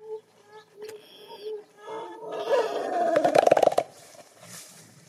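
A gorilla hoots in a series of low, breathy calls that quicken and grow louder, building into a rapid, rough burst of pulses before trailing off into quiet.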